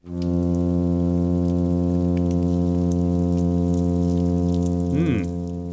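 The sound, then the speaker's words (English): A steady, droning underwater hum from a plainfin midshipman fish, recorded in a lab on the California coast. It is rich in buzzy harmonics and unbroken for several seconds, with faint crackling in the background and a brief warble near the end. “Okay, here's a hum sound produced by the plain fin midshipman.”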